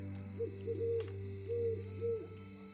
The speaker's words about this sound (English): Do you hear, like, hooting? That, like, is probably coming, like, east from some of the alleyways this way.